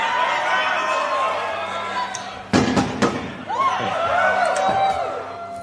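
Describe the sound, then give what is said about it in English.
A heavy Tesla truck door slams shut twice in quick succession, loud, over a steady background of crowd chatter and murmuring voices. “It's a regular truck door.”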